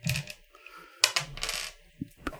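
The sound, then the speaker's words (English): Dice clatter across a hard tabletop in a run of sharp, bright clicks and rattles, tumbling irregularly for a couple of seconds before coming to rest on 18. Fairly loud, with no voices. “18 on the dice.”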